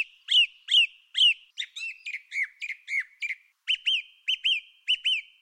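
A male songbird sings loud, clear whistled phrases from high in a tree, each repeated several times in quick succession, bright and high-pitched with sliding, ringing notes and short pauses between them.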